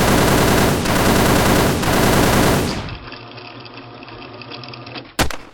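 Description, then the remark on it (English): A loud burst of rapid automatic gunfire sound effect rattles for about three seconds, then cuts to a lingering hiss and rumble before one sharp, single shot cracks near the end. “Really? The gunshot sound?”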